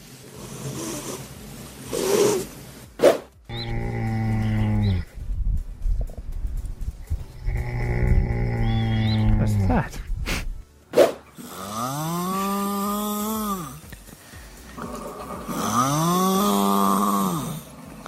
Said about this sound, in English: But here are today's three snores.